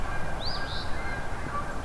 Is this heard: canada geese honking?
yes